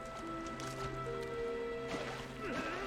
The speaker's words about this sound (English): Now we can fill the moat around the Dia tree. We can only fill out a certain range, so we'll have to do this two or three times. But you just click and hold, and it fills up with muddy water.